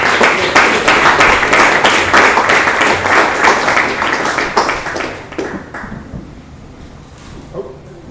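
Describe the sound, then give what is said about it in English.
A crowd gives a round of applause for a speaker being introduced, with dense, rapid clapping that holds steady for about five seconds, then thins out and fades to a few scattered claps. “Just if you guys could just give a round of applause to our brother”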